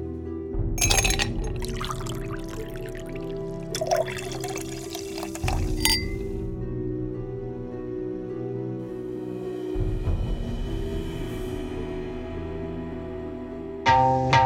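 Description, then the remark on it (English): Blanton's single barrel bourbon is poured steadily into a glass over ice, with a few sharp clinks and rattles near the start and a fresh splash at the end. Fairly loud, with no talking. “All right, so grab a glass, grab some ice and your bottle of Blanton's single barrel bourbon”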